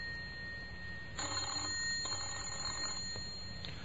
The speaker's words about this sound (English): Someone tried late Sunday. Whoever it was kept trying, but only the bell sounded in the empty house.